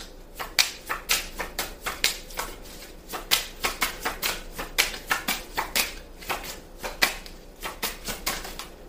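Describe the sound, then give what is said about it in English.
Tarot cards being shuffled and drawn, a steady run of crisp, papery snaps and flicks in an uneven rhythm, fairly quiet, with no one speaking. “May I have some more cards, please?”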